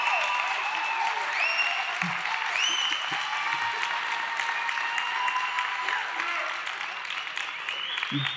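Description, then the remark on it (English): Loud, sustained applause from a large crowd welcoming home the pastor and first lady, a dense steady wash of clapping with occasional cheers and whoops rising above it for the full eight seconds. “That is the loudest applause.”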